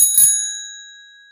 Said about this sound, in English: At the end of 5 minutes, I'll play this bell to come out of the meditation.